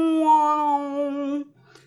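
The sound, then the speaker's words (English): A cat lets out one long, drawn-out yowl, loud, holding a steady, whining pitch for about a second and a half before cutting off into faint background noise. “Howling or yowling.”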